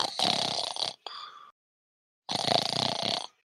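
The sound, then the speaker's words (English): A man dozing off mid-sentence at breakfast snores loudly in two long, rasping breaths, with a shorter wheezy exhale after the first and a quiet pause before the second. No one talks. “… snores through scene.”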